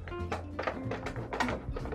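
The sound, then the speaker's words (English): Rubber word stamps being rummaged through, with a string of irregular clattering, rustling bursts of small hard objects knocking together, steady and moderately loud, no voices. “I'm rustling in here.”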